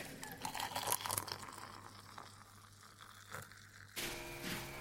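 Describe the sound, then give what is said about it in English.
Building work next door, where the house is having everything inside taken out: faint, irregular scraping, crunching and tearing noises over a steady low hum, then a sudden shift to a harsher, continuous rasping noise near the end. No one speaks. “That's builders next door”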